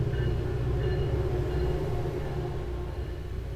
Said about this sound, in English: If you need a choo-choo train, I honestly have an abundance of choo-choo trains.